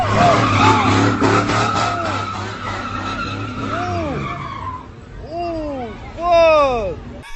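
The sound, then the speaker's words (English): A car engine roars steadily while tires squeal through a skid, followed by several sharp, loud squeals in quick bursts near the end. “And then they just, for some reason, just get like blasted by the car.”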